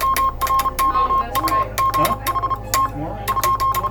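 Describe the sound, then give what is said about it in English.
A Morse code telegraph signal, the last Morse message sent on the world's oceans, on July 12th, 1999: a steady, mid-high beeping tone broken into short and long pulses, accompanied by sharp repeated clicks over a low, continuous hum. “On that day, July 12th, 1999, the Morse operators who tapped out these signals for years, even decades, gathered to say goodbye.”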